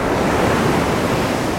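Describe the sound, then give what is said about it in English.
A massive ocean wave crashes onto a sandy shore in a loud, sustained roar of hissing white water that stays steady throughout, with no voices. “Limbs rhythmically intertwined until one final climactic moan precedes a massive wave crashing behind Christ.”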